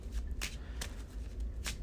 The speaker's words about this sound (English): Shuffle my deck.